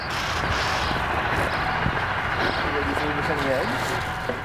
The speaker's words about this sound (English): Most of the time, if I go outside, my headphones drown out the noise of cars and trucks, street performers, construction, like the construction you're hearing right now as they're building a house across the street.